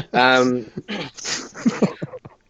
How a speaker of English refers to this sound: Whoop, there goes the dog. Sorry.